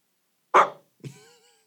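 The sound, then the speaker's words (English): A person imitates a puppy's bark: a rough, breathy yap followed by a thinner, whiny yip, two short bursts with no talking around them. “Oh, do your puppy dog bark for us, and we got to go.”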